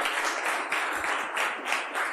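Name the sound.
audience round of applause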